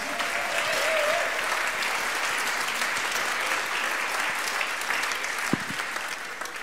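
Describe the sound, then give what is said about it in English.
A church audience applauds steadily for several seconds during a church meeting, a dense wash of many hands clapping at an even level that tapers only slightly toward the end, with no talking over it. “Hey, we don't usually do this, but let's give him a big round of applause, shall we?”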